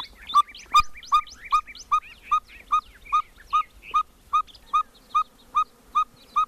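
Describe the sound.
A biologist imitates a cactus ferruginous pygmy owl's call at sunrise in a canyon of cactus and mesquite at Organ Pipe National Monument: a long, steady series of short, mid-pitched whistled toots, about two or three per second, over a busy background of chattering songbirds.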